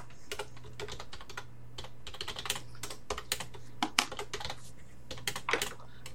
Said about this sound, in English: Well, I'm so good at typing, you wouldn't believe that I've written 3 novels.